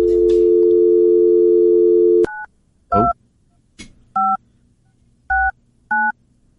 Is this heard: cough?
no